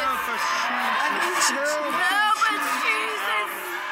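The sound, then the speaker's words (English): A crowd of Word of Faith church members performs a blasting prayer, shouting and wailing at once in a loud, continuous, wordless clamor, overlapping cries rising and falling with no clear words throughout. “When church members got violent, they would also perform blasting prayers.”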